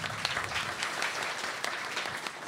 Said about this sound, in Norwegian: En liten applaus for han.